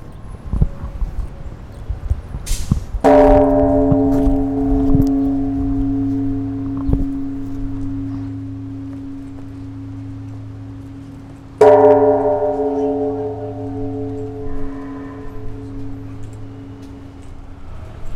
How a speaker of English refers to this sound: After the service, then the attendees were coming out here and to ring the bell to honor those who passed away by ringing the bell individually.